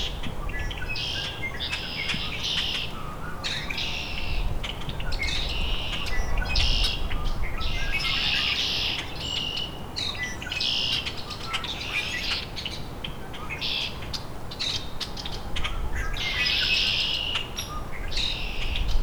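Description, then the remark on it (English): A sharp hairy woodpecker call cuts through a dense, continuous chorus of chattering and squeaking common grackles and red-winged blackbirds, with steady low rumble underneath and no talking. “Hairy woodpecker.”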